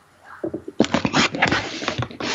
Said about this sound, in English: I can hear something clicking. That's the ghost radar.